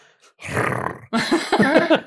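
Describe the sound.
A man imitates a cat's purring growl with his voice, likened to the purrs of a cat named Fletcher: a low, rough rumbling drone, then a brief pause and a second, more voiced, wavering growl, fairly loud and without words.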